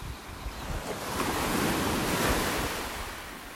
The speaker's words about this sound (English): I hear the ocean first, then spy deep blue surrounded by peach-colored dunes.